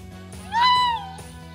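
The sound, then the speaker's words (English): A raccoon dog gives a single high, whiny vocalization, a cat-like mewing cry that rises, holds, then trails off, lasting about half a second over a low steady background hum. “Raccoon dogs are unique creatures.”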